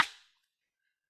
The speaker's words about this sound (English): All right, I will remember to clap for this one. Ready? 3, 2, 1.